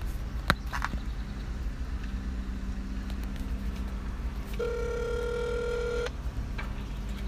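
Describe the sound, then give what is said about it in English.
A telephone hold tone sounds: a single steady electronic beep lasting about a second and a half, clear and fairly loud over a low continuous rumble, with a sharp click earlier on. “Please hold. Your phone call is very important to us.”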